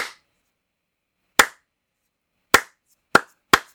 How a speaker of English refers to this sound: Slow clap to the guest or to the cameos, and to like Tim Roth was fantastic.